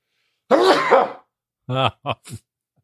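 A loud, breathy sneeze with a voiced, drawn-out build, followed after a short pause by three quick, throaty bursts like small coughs or throat clearing. No one is talking.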